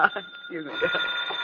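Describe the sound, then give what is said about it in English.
A telephone rings with a steady, shrill, high-pitched trill that starts about halfway through and continues to the end, following a brief moment of voices at the start. “Yeah, well, you better answer the phone.”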